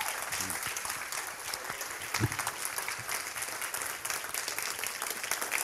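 Steady, sustained applause from a large audience, a dense wash of clapping that holds at an even level throughout without any speech over it.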